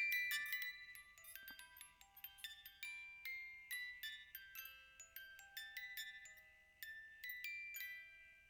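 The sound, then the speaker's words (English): A wind-up music box plays a tinkling tune: quick, bright plucked metal notes ringing high and decaying one after another in a steady melody, fairly soft, with no voices. “Yo, I love music boxes.”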